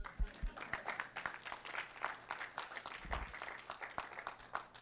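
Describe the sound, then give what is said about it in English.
An audience breaks into steady applause, many hands clapping in a dense, crackling patter that holds at an even level for several seconds, with a few deeper thumps mixed in. “You can clap.”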